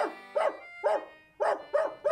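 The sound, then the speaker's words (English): A dog named Hector, shut outside a door, barks about six times in quick, uneven succession, each bark short, sharp and mid-pitched, with brief pauses between bursts and no voices present. “Sorry to have shut the door on your four-footed mate, sir, but I has a mortal fear of dogs, that I does.”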